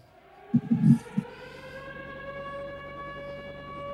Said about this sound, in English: Gotta love a good tornado siren.